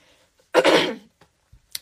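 A raspy throat clearing that rolls into a rough cough lasting about half a second, followed by a couple of faint, short throaty sounds and a brief breath near the end.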